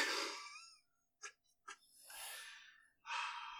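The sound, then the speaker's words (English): A coughing fit: a long raspy burst, two short sharp coughs, then more harsh, breathy hacking with gasping breaths in between, fairly loud and with no talking. “Sorry, okay. I'm coughing and dying.”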